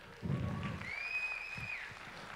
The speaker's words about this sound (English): Yeah, the moms in the room are like, are you joking? That's as loud as you clap for that? I put 9 hours into that bird.